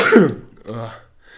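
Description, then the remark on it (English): A single sharp sneeze bursts out at full force, then trails into a short throaty, voiced sound before quieting. “Bless you.”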